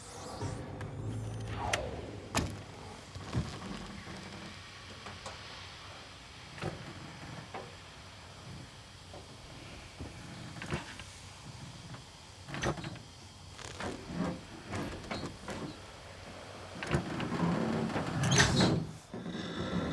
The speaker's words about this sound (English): So we're going to start a little bit earlier from when they are inside the lunar lander trying to open up the hatch door.